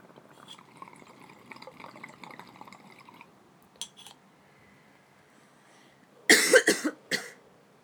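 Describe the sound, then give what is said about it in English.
Soft bubbling water gurgles in a bong for a few seconds, then after a quiet pause a loud burst of harsh coughing erupts after the bong hit, four rapid hacking coughs in a row. “Haha, you coughed first.”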